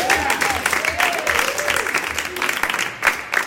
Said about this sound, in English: Let's have an applause for this section of our show.